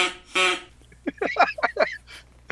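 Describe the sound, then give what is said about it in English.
A Duck Commander duck call blows a quick run of about five raspy, descending quacks, fairly loud, preceded by a couple of short breathy bursts of air. “Got you, Duck Commander.”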